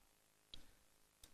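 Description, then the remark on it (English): Two quick, crisp rustles of thin rice-paper pages of a new Bible being turned to 1 Timothy 5:8, quiet, spaced about a second apart with no talking. “Still breaking in the rice paper on this new Bible.”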